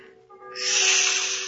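A cobra in a room one story off the street hisses, starting abruptly about halfway through and holding as a loud, steady, breathy rush like escaping steam, with a faint constant hum underneath and no voices.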